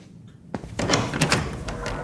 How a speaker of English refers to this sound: Let me get the door for you.